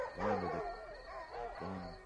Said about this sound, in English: Now just distract the vicious guard dogs with this hunk of... meat.